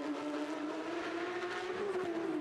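Steady, loud engine roar of three race cars battling through turn two of a race track, a sustained tonal drone that dips slightly in pitch near the end as the cars sweep past without any speech.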